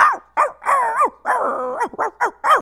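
A dog barks in a quick, uneven burst of about seven loud barks, some stretched into yelping, whiny tones, with no one talking.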